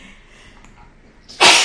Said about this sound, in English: Hold on, I'm sorry, I keep sneezing. Hang on.